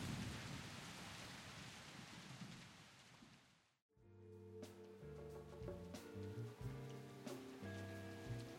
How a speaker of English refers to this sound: You hear that rain? Yeah. And it's really raining outside. I'm going to look at the window. It's still raining. It's raining in Seattle as well.